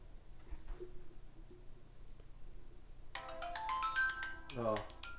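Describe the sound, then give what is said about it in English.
After a few seconds of quiet room noise, a downloaded mobile phone ringtone starts up as the phone is called to test it, a bright melodic sequence of electronic tones playing fairly loud until the end. “I'm just getting Ethan's number to see what the ringtone is”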